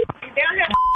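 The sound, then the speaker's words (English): A short run of telephone keypad dialing tones, a few quick beeps ending in a steady tone, alongside a voice talking. “So I need you to call on three ways.”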